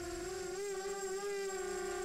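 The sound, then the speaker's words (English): A drone's motor whine hums steadily for about two seconds, a buzzy mid-pitched tone with bright overtones that wavers slightly in pitch, with no voices over it. “That's a drone.”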